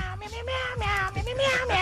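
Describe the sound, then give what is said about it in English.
A voice imitates a cat, drawing out a few wavering, nasal meows one after another, fairly loud over a faint low background. “Meow, meow, meow, meow, meow, meow, meow, meow, meow, meow, meow, meow, meow.”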